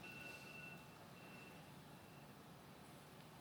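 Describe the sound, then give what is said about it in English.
A high electronic alarm tone sounds in intermittent stretches, fairly faint, over a constant broad wash of outdoor rumble and noise. No one speaks. “And just sense what happens in your body as you listen to the sounds around you, including the alarm.”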